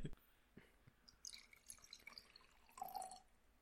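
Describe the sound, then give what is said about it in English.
Beer is poured into a glass, quiet trickling and dripping with small glugs, the pitch climbing toward the end as the glass fills. No one speaks. “Ooh, beer water. So good.”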